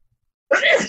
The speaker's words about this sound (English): Bless you twice. Bless you.